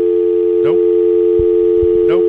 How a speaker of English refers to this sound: Nope. That would be a dial tone.